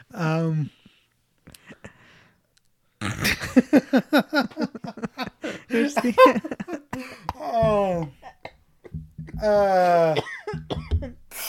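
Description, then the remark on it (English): Someone coughs a few times in short, harsh bursts, mixed in with stretches of talking voices. “You're coughing, staying in.”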